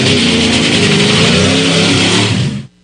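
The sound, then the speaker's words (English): A race car engine revs loudly, a sustained high-pitched roar with shifting pitch that cuts off abruptly near the end. No voices are heard. “Start your engines.”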